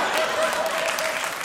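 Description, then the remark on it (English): A crowd applause sound effect: dense, rapid clapping forming a steady, bright wash of noise that holds an even, fairly loud level for about a second and a half. “That's more for the applause and the laughter.”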